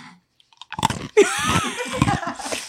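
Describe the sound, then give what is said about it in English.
Crunching and chewing of ice, a few sharp bites followed by a steady, grinding crunch that fills the rest of the moment, loud with no talking. “Because they say if you like chew ice, you're sexually frustrated.”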